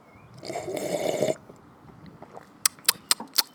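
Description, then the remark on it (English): A breathy, slurping sip of coffee lasting under a second, followed after a pause by four quick, sharp little clicks in a loose rhythm. No one speaks. “We're going in for the first coffee sip right now.”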